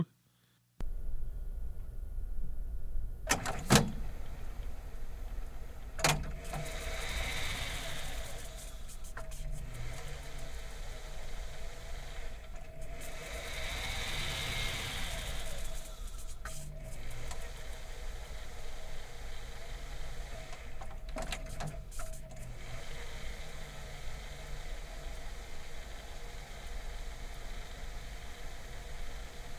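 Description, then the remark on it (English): Mangled tape crunching through a player as an album's hidden track: a steady, loud hiss and low rumble, broken by sharp clicks and dropouts, with warbling swells that rise and fade. No voices. “The hidden track sounds like maybe a tape getting all crunched up.”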